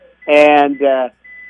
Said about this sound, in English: Sounds like your microwave dish is done there, too, so you might want to check on that.